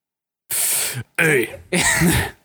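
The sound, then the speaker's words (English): Three loud, breathy sneezes burst out in quick succession, each a sharp hissing blast with a voiced edge, separated by brief pauses. “God bless you.”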